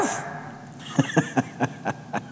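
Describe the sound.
A person imitates a dog barking, letting out about six short, gruff woofs in a quick, steady rhythm, fairly loud.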